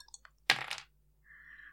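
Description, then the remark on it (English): Two dice clatter onto a hard table in one sharp burst, preceded by a few light clicks and followed by a faint, steady ringing tone. No one speaks. “This is 2 dice, because I don't want to pick up the other ones.”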